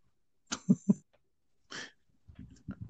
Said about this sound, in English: I'm breathing kind of heavy over there. That is not me. That's not you? That is not me breathing heavy.